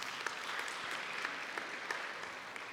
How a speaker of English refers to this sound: And we received several of those prayer cards, and just want to let you know that so far we have had, that I know of, at least two impossibles have already been answered. Can we give a hand clap of praise for that?